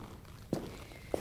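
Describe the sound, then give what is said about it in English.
Two distinct footsteps of a woman land about half a second apart, crisp heel strikes on a hard floor, moderately loud against quiet surroundings. “Presently, I heard her footsteps.”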